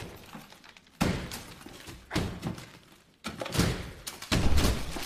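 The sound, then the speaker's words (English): Four loud, heavy blows land roughly a second apart, each a crunching thud with a brief rattling tail, like something being smashed with a hammer. “He can't get in here with a hammer, can he?”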